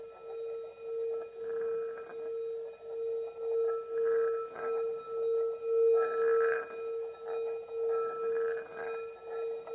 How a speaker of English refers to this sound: I'm going to ring the bell and you can come up from the meditation at the end of the stopping of the bell.